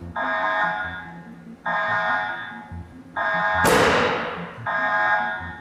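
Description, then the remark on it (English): A fusion machine's charging alarm, signalling the start of charging, sounds in four steady, buzzing tone bursts with short gaps. During the third burst a loud, sharp thump hits as the machine creates the plasma, then fades quickly. No one speaks. “The alarms you hear when we start charging are alerting you to the fact that we're starting to charge this machine.”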